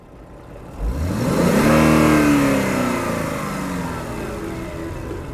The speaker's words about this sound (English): On the other side of Sleepy Hollow, close to the train, in a neighborhood that John Lennon might refer to as the cheap seats, a 1970 Chevelle turns onto the street.